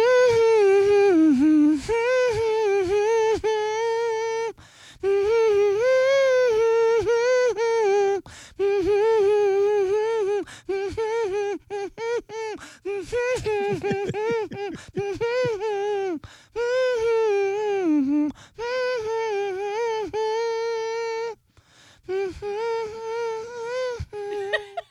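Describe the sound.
A single voice hums a tune with no words for a radio song-guessing game, its steady pitch rising and falling through several melodic phrases separated by brief pauses for breath. The humming is fairly loud and carries on alone.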